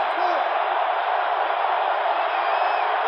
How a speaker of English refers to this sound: So the Irish get a gift to start this drive, and the crowd is coming alive once again.